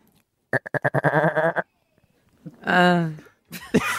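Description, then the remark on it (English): A person gives a vocal goat impression: a rapid stuttering series of nasal bleats, then a longer wavering bleat after a brief pause, followed by a burst of noisy reaction, all loud. “…, when you're ready, give us your goat impression”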